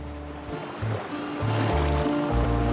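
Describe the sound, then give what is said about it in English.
A steady wash of ocean water swirls and laps around a boat at open sea, loud, with low droning tones rising and falling beneath the continuous surf. “How did we end up at open sea?”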